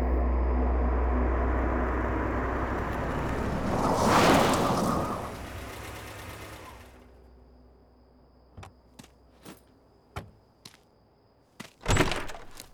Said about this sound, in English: It's just before dusk here at the cabins. Car pulls up to the building. There's a squeal of brakes. Car doors open.